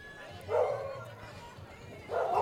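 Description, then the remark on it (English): Two sharp dog barks ring out about a second and a half apart over a low, steady murmur of background chatter on an outdoor tap room patio in Chicago in summer, loud against the ambient noise. “Really interesting, nothing like dogs in Chicago in the summerish time.”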